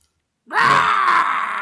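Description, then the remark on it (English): After a brief silence, a glowing video game creature lets out a loud, sustained, strained scream with a rough groaning edge. It holds steady to the end, with no talking over it. “A little bit of a glow to it, and it is screaming.”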